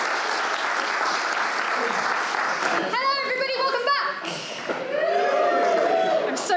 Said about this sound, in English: Awesome. Let's have one last round of applause for our first group.